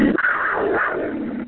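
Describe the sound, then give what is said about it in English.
A Panthers growl sound effect played on a show whenever someone says something exciting about the Panthers: one rough, rumbling snarl lasting about a second and a half, loud and steady throughout, with no talking, before it cuts off abruptly. “Don't mean to frighten you when I let this go here, but we have a Panthers growl every time someone says something about the Panthers that excites all of us, so I'm going to do that for you.”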